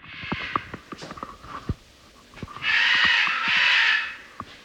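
A parrot outside a window of a small back house surrounded by wilderness and tall ponderosa pine trees, at night, lets out a loud, harsh, drawn-out scream with a voice-like quality, sounding like "Oh my God," lasting under two seconds, preceded by scattered clicks and taps. No one speaks.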